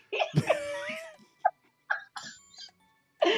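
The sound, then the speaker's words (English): A person imitates a struggling cat in the intro of the Captain Quest Show, with strained, wavering high vocal yowls and short choked bursts, separated by brief pauses, ending in another strained cry. “Every time I hear that intro, I could be mad, I could be pissed off, but that struggle cat sound of yours is hilarious.”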